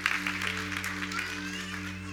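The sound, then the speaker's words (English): An audience claps steadily for a couple of seconds, a dense wash of hands, with a low electrical hum underneath. “Yeah, you can clap if you feel so.”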